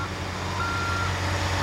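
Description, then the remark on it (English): A giant lorry reversing rumbles with a steady low engine drone, while a thin, high reversing warning tone sounds over it partway through. No one speaks. “It's a giant lorry.”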